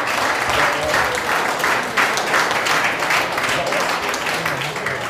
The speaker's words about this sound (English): Can everyone give Adam Gilby a round of applause? Thanks, guys. Thank you.